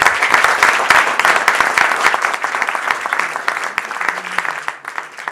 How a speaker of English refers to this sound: May I have a round of applause?